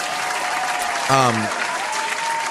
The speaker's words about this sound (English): The Canon, where's the hand claps?